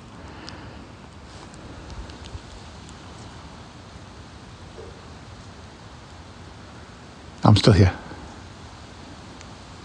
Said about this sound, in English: Just listening to the water in the background.